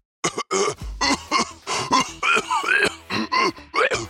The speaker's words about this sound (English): falls heavily to the floor, massaging his throat and coughing.